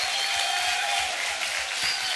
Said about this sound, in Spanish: Fuerte el aplauso para esta nueva generación.